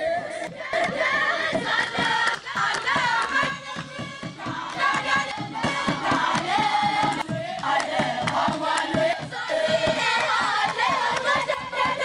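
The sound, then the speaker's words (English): A group of young women sings a traditional Palm Sunday hymn together as they come down a mountain, loud and continuous, with a steady rhythmic clapping or beat running underneath the whole time. “And then we even encountered a group of young women singing a traditional Palm Sunday hymn as they came down the mountain.”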